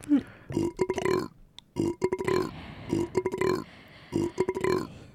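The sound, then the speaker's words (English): Loud retching and barfing noises come in four heaving bursts at a steady rhythm, each a strained, throaty gag with brief pauses between and no talking. “Oh, Frog, he's barfing.”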